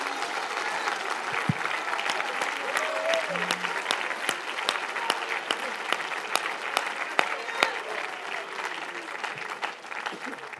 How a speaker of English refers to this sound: If you believe that, clap your hands with all of your might.